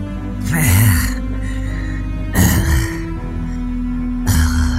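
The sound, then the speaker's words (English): A voice imitates the heavy, labored breathing of a beaten, bruised elderly man hunched over in a corner: three loud, raspy breaths with a voiced groan, spaced a couple of seconds apart, with a low drone underneath. “He seems to be like hunched over in the corner, breathing heavily.”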